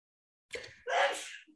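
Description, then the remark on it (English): A single sneeze, a quick sharp intake of breath followed by a loud, breathy burst that fades out over about half a second. No one speaks. “Bless you.”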